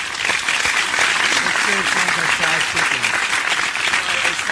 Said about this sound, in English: And let me make sure I bring the applause in. But the applause I want to bring in, I want to make sure it's on the right level.